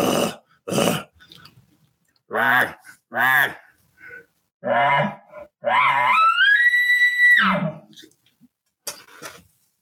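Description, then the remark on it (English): A voice imitates an elk bugle, growling heavier to add agitation: several short, rough growling grunts, then one long call that climbs into a high, thin whistle over a heavy growl before dropping off, with a final faint grunt. “Well, all you do is you just start growling a little heavier.”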